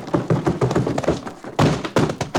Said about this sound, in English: someone was heaved right through the doors of that saloon by the bouncer.